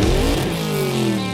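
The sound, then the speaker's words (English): A $330,000 Lamborghini sports car engine roars, ridden in with actor Frank Grillo, its pitch sliding and shifting as it revs, loud and continuous with a possible hint of tire noise and no voices. “getting to ride in this $330,000 Lamborghini”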